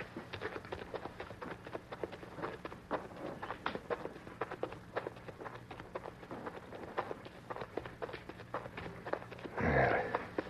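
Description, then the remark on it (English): Steady footsteps crunch over rough ground at a brisk, even pace for the whole stretch as people walk on after leaving their horses, with a brief breathy rush near the end. “We'll leave the horses ground hitched and walk from here.”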